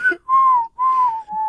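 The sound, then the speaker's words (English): A person whistles a short tune, three sustained notes gliding slightly in pitch with brief pauses between them, clear and fairly loud with no other sounds. “By the way, I was whistling all day yesterday.”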